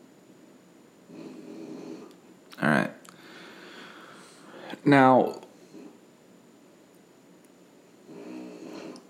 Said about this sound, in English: please, with the snoring.